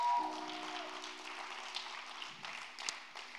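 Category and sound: crowd, audience hand clapping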